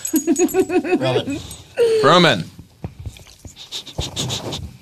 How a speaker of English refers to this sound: Anyway, listen to the dog and that sort of drooling, slurpy sound he makes.